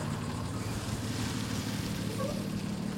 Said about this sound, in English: As a rental truck pulls up beside a nondescript building that sits along a residential street, it's already hot and humid in this picturesque southern town.